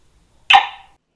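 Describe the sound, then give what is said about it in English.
A single sharp bark from Abby, a cattle dog, saying hi when asked, loud and abrupt, ringing off quickly after about half a second, with silence before it and no voices. “and Abby, my cattle dog and non-reptilian co-host.”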